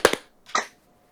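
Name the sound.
single hand clap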